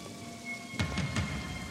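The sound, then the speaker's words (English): Steady rain hisses throughout, then a cluster of sharp thunder cracks with low rumbling breaks in about midway, loud. There is no talking. “Oh, and it's ominous. Storm clouds.”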